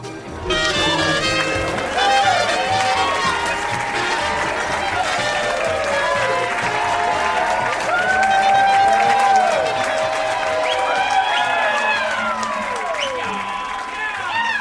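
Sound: crowd applauding and cheering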